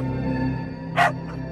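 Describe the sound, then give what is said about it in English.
A single sharp bark from a dog tugging an injured man free from wreckage rings out over a steady low background hum, followed by a fainter, shorter yelp a moment later. “would recognise that bark anywhere, and as the smoke clears, he sees a third dog, tugging an injured man free from the wreckage.”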